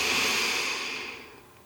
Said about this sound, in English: I'd like to invite you to begin breathing in and out through your nose. So a slow breath in.